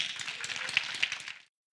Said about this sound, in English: Let's get a little hand clap of praise.